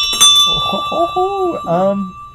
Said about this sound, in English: can you do me a favor and ring the ship's bell? For sure.